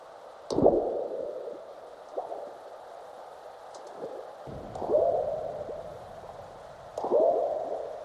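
Seismic recordings from stations in North America and Central Asia, sped up 10,000 times and raised about 13 octaves: deep, frog-like burps of earthquakes recur every couple of seconds, each trailed by short descending chirps and gurgles of aftershocks over a steady low hiss.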